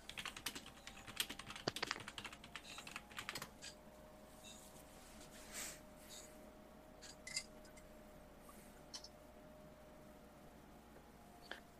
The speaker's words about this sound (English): I am also typing really, really fast.